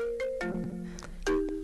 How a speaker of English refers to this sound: So while we were putting this piece together, the phone rang.